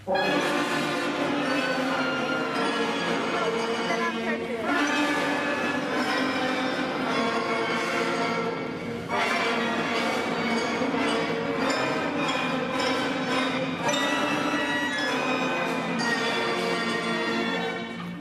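A fourth grade school recital from a video uploaded by a pupil's parent: many shrill wind instruments playing together in a loud, continuous, somewhat discordant wash of sustained notes, with brief dips between phrases and no talking.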